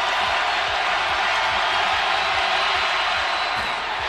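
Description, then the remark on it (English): A packed Virginia Tech Hokies basketball arena erupts in a loud, sustained roar of cheering after Jordan Miller missed a free throw, with fans set to win free bacon if he misses the second. A dense wall of crowd noise holds steady for several seconds with faint thumps underneath. “After Jordan Miller missed that free throw, the crowd's going nuts.”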